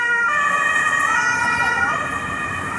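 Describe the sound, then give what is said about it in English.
An emergency vehicle siren blares loudly and steadily, its layered high tones wavering and dipping slightly in pitch as it goes by, over a low rumble of road traffic. “Oh, hold on. Fuck, I hate emergencies.”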